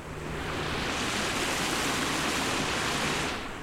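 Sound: river water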